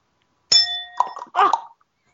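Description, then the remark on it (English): A single bright bell strike with a shimmering ring that fades within half a second, followed by a brief burst of clattering, rustling noise, all fairly loud. “It was a bell.”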